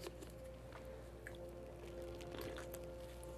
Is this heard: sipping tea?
yes